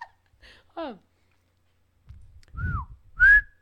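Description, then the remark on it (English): A person whistles a few short notes, each sliding in pitch, with a breathy, airy rush beneath them. The last note is the loudest and steadiest, and no one speaks. “Your whistle it's is airy.”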